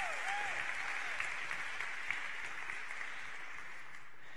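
A church audience breaks into sustained applause for God, dense clapping from many hands with a few faint cheers, holding steady for several seconds before starting to thin out at the end.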